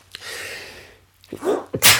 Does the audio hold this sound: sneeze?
yes